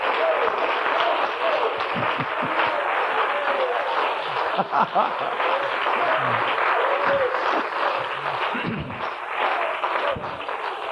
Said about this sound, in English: Clap again for just a moment and worship the Lord.